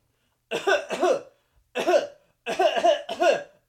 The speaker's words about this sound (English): We start hearing like incessant coughing, and it's like kind of ridiculous.